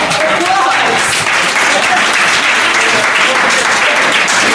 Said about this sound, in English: Give him an applause!